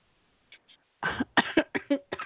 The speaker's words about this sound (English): I think Karen gave me the coughs here